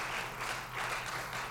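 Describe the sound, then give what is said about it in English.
A crowd applauds steadily, a dense wash of many hands clapping together at even volume, with no voices standing out. “How about we give a big applause to our mothers, our father who raised us.”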